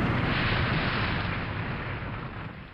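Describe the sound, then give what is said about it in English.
A Hudson plane spirals down, hits a log on the ground and explodes in a loud, dense roar of rumbling noise that holds steady, then slowly fades over a few seconds, with no voices. “Then, when that turn was complete, the Hudson's nose dipped, it spiralled, and despite a valiant attempt by the pilot to bring the plane down safely in a clearing, the Hudson hit a log on the ground and it exploded.”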